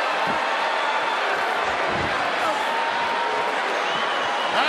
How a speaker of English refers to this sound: Here we go. Listen to the crowd.